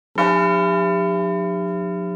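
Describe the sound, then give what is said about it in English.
A single bell tolls once for the Bells of Peace Veterans Day observance at 11 a.m. on November 11th, with a sharp onset, then its deep, rich tone rings on and slowly decays, loud, with no other sounds around it. “Just have the app open before 11 a.m. local time on November 11th, and all the phones will toll together, 21 times, 5 seconds apart.”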